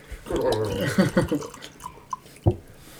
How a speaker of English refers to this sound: But right now, we need to get some poured. That's a good sound. Good right? Gurgle.